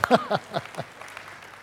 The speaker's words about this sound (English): That deserves a little clap, don't you think?